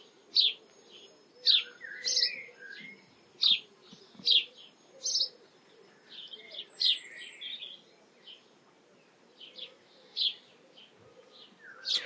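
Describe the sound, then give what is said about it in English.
A male sparrow sitting in a garden hedge cheeps repeatedly and insistently in the afternoon, proclaiming its territory: sharp bright chirps spaced roughly every half second to a second, over a low steady background hum. “And it's a male sparrow sitting in the hedge, proclaiming his territory.”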